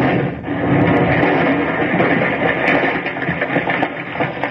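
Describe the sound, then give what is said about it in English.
A plane on railway tracks explodes loudly, erupting into a sustained, rumbling roar that fills several seconds with dense, crackling noise and never fades, blowing up the track. No one speaks. “We pull that plane off the tracks before she blows.”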